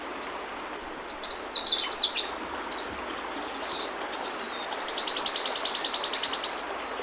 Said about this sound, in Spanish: palomas y tortolitas cantan al amanecer.